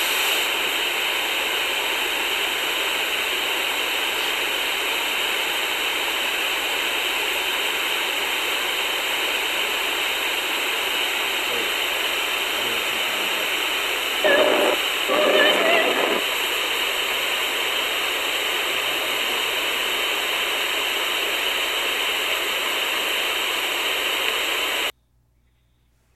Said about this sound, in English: And then this sound leaps out of the radio. Again, we heard it in real time. And I'm like, what was that? And so the longer clip that we're about to play will show how it just sort of leapt out of the static.